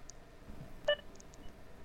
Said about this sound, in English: How's it going? It sounded like he said, how's it going? And then you hear the beep. That's why I think it's like an Amazon driver.